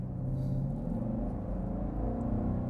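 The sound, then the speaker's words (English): A car engine, driven in snow and ice mode, rumbles loudly and steadily, a deep continuous drone with rising harmonic tones as it pulls forward, with no voices over it. “Oh, I hope the mics are picking that up. Ugh, makes such a good noise, though. That was pretty zippy, but it even from the passenger seat, it feels heavy.”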